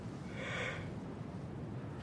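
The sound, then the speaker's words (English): A single yawn from a person, a breathy drawn-out exhale that swells and fades within about a second, with no talking around it. “Oh my god, sorry, I yawned again.”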